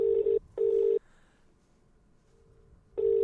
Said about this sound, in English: Let's ring him. Let's ring him.